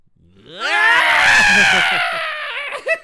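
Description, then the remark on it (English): A woman's loud scream rises sharply in pitch, holds for about two seconds as a drawn-out, strained cry, then sags and breaks off into short ragged gasps as she falls to the floor dying after being shot. “there is a very odd delay between when Leslie gets shot and when she falls to the floor screaming and dies”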